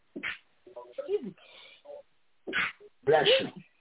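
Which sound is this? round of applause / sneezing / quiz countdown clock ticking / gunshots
sneezing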